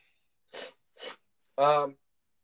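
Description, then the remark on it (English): A person blows their nose: two short, breathy blasts, then a longer, louder honking blow with a nasal, buzzy tone. “I'm blowing my nose.”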